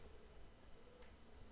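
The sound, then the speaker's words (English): Faint, regular ticking like a small watch coming from a person's chest, heard very close up through a steady low hiss. The ticks are soft and evenly spaced, and no one speaks. “It sounds like a watch. Like Big Ben.”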